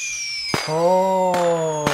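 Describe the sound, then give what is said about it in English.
Three sharp fireworks bangs go off over about two seconds, loud, with a steady whistling, humming tone running between the blasts. “Dude's going to be loading up the fireworks with Moderna needles.”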